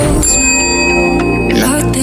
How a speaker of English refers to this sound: The ticking sound.